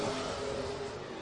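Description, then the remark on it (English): A race car engine roars steadily and loudly as it accelerates coming off turn four at Penticton Speedway, a sustained high-revving drone filling the whole brief moment with no voices over it. “The car owned and formerly driven by Shane Harding coming off at turn number four now.”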